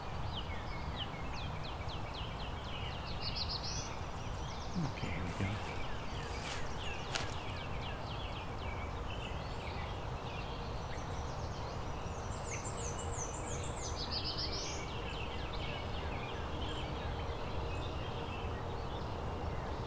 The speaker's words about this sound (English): Is the black-throated blue warbler just doing a faster version of its song? Just kind of beer, beer, beer bees. Rather than beer, beer bees.